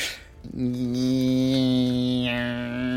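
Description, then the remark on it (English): A person imitates an electric toothbrush with their voice, a steady, nasal buzzing hum held for about two and a half seconds, its tone shifting slightly near the end. “Oh, a toothbrush. Electric toothbrush. Yes.”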